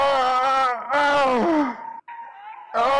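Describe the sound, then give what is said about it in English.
A man moans and whimpers in long, loud, drawn-out cries whose pitch wavers and sinks, broken by a short pause before a thinner, higher whine and another moan. “It sounds like somebody like... coming? Moaning or like whimpering or something.”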